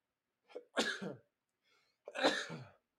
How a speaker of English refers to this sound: Oh, here comes the sneeze, I think.